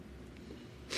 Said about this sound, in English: I have to sniffle away from the mic.